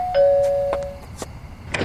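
A doorbell chimes at a family home, a short higher note dropping to a lower tone that rings out and fades over about a second, followed by a few soft knocks and rustling handling noises as the father opens the door to let in the neighbourhood secretary.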